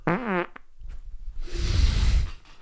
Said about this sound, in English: Dude, the farts are flowing out of your body today.